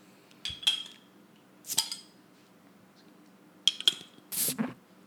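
Beer cans being cracked open: a handful of sharp metallic snaps, each followed by a brief fizzy hiss, with a final longer hiss at the end and no talking.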